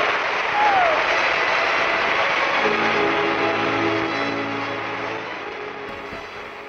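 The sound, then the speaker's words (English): A large crowd at an awards ceremony applauds and cheers loudly and steadily as the winner is announced and walks up to the stage, with a sharp whistle cutting through early on before the roar slowly begins to fade. “And the crowd's going nuts. Like, listen to this, and the whistles.”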